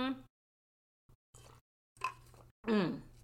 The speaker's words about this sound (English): Let me take a sip. I'm feeling hydrated.